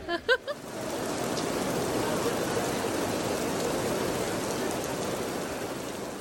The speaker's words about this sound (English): And now it's starting to rain. It's now starting to rain, so we better run for cover.